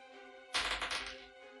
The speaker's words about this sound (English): I hate hearing him pick up a lot of dice.